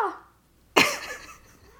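A cat meows: a soft, fading mewl at the start, then after a brief pause a sudden, louder, close-up meow that slides downward in pitch and trails off.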